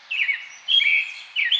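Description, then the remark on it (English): Birdsong outside a window: three bursts of bright, high chirping trills at a steady pace, with a thin background hiss and no talking. “That's really the sound right outside my window right now. Do you ever just sit outside and listen to birds?”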